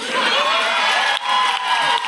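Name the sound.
applause and cheering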